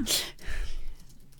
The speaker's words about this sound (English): I just yawned, and we know how you feel about it when I start yawning.